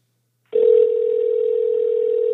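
A steady telephone dial tone of an outgoing phone call starts abruptly after a half second of silence and holds at an even, fairly loud level without any break or change in pitch.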